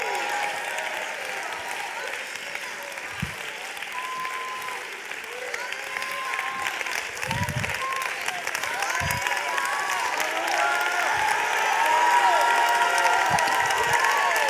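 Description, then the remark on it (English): An audience roars and applauds continuously, a dense wash of clapping mixed with cheering and shouting voices that holds steady and swells slightly louder toward the end. “Do you hear the roar that's in the building, saith God?”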